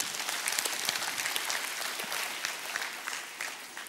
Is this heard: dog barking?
no